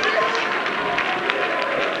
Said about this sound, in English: Clap your hands again, all ye people, and shout with your voice of triumph.